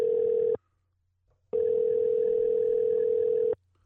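A phone ringback tone on an outgoing call: a steady electronic hum cuts off after half a second, then after a pause sounds again for about two seconds, clear and close with no voices.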